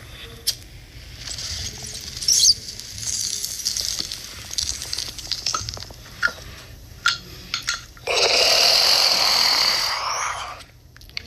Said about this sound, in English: That's a fucking bong hit.